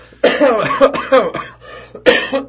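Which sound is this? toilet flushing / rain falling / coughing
coughing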